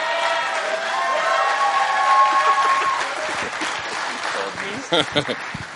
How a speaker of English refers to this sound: So our next speaker this morning is a better aged member of our church who loves Jesus and got the privilege to come into camp this year. Please help me welcome up with raucous applause,